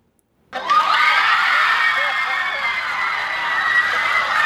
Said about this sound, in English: It's like the place went nuts at the movies. Yeah, it was amazing.